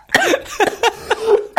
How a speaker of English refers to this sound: Oh my god, I'm sorry. The laugh and the cough came at the same time. Oh dear.